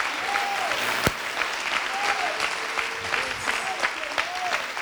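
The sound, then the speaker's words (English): A crowd claps steadily for several seconds, a dense, even wash of applause with a few sharper claps standing out, while faint voices call out over it. “I think we ought to clap our hands for that.”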